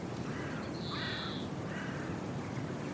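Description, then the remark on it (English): Greenfinches calling outdoors: one drawn-out, buzzy wheeze stands out clearly, with softer trilling notes before and after it, all over a steady background of wind or water noise. “cast right over to where that green finches are singing away.”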